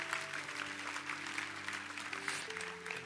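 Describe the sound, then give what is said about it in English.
An audience claps hands together in celebration, a dense, steady wash of applause that carries through the whole clip, with sustained keyboard-like tones held underneath and no one speaking. “So, ladies and gentlemen, can you clap your hands and celebrate the excitement?”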